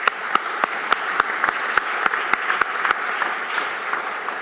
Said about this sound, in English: A round of applause for Ron Jamieson.